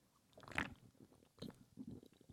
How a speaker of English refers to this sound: I'm going to open this sun kiss. Yes. You hear that? Let me drink some. Hold on.